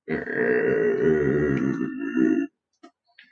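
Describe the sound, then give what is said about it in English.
A loud, rough, low growl rumbles steadily for about two and a half seconds, then cuts off, followed by a couple of faint short noises. “He hears a low but distinctive rumbling growl.”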